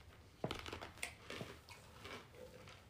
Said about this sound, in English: Just little boogie break. Just a munching on ice, y'all.